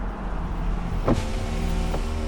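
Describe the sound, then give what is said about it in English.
A car pulls up and idles with a steady low rumble as an electric window motor whirs briefly, lowering the window, followed by a second short mechanical click, with no voices. “He would pull up beside her in whatever car he was driving at the time and invite her on a date.”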